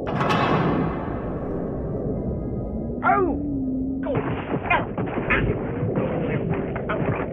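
Two men fighting in a ship's hold: a loud, heavy crash opens, fading into a low, continuous rumble. A brief whining tone rises partway through, then rough, scuffling thuds and bumps continue to the end.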